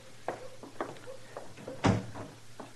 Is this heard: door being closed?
yes